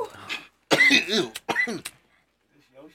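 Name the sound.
coughing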